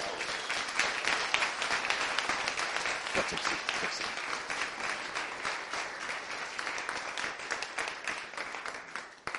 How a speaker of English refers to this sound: you know, you just think that all that applause was for you.